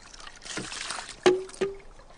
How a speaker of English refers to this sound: You get that water fountain that, like, yeah, hits that makes the block. That sound.